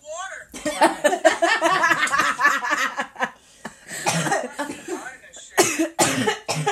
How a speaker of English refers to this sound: No, because she thinks that's so funny to be coughing. And then she throw up.